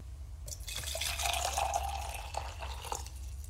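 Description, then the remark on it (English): Hot water pours steadily into a cup for about three seconds, the first of two pours in a game of guessing hot or cold by sound: a bright splashing stream with a faint rising tone as it fills, over a low background hum. No one speaks. “I'm going to scramble the two cups. All right. This is pour number one.”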